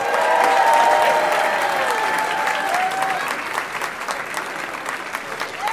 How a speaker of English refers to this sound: Guys, give a huge, huge round of applause for Kareem Biggs Burke.